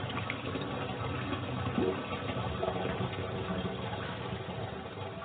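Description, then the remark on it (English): A toilet flushing: a steady, continuous rush of water with a churning, hissy texture that holds at an even level for about five seconds, with no voices over it. “What kind of toilet is that? Does it have a long flush?”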